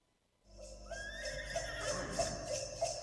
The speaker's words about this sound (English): Horse.